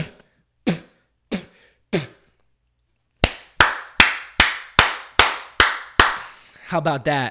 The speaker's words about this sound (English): That was 100 claps a minute, bro. I'm breaking records.